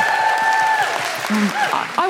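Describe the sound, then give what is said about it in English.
An audience gives a round of applause for a musician, clapping in a dense, steady round lasting about two seconds, with a few bright whistles and cheering voices rising above the clapping. “So just a big round of applause for the power of music and the power of”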